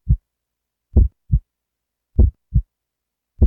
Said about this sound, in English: that's the digital heartbeat.